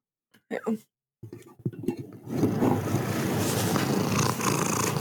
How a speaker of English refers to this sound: And is that young Theo I see? Yes, it is. And I think he's purring. He loves a good rooster.